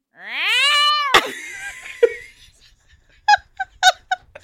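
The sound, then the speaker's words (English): A person imitates a cat with one long, loud, squeaky cry that rises and wavers, cut off by a sharp click, followed by a few short vocal bursts, copying a new noise the cat has never made in eight years. “And he's producing new noises that in the 8 years I have known this cat, he has never made before that are like...”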